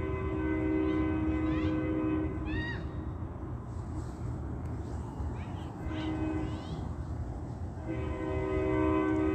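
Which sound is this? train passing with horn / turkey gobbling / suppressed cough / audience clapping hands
train passing with horn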